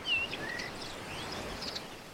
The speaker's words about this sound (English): And as you go, you listen to the ocean waves and the sounds of the birds starting their day.